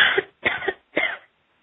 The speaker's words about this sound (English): I take a deep breath and cough them out.